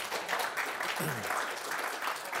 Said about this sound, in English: Yeah, you can clap.